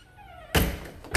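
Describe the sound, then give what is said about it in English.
A faint, high descending whine fades out, then a door opens with a sudden thunk to let the dog Chewy outside, and a loud, steady rush of outdoor noise continues and swells at the end. “Look at me, recording and walking to the door. Go ahead, go outside.”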